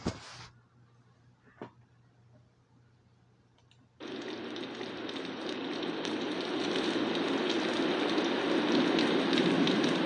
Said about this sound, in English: So since it's going to keep raining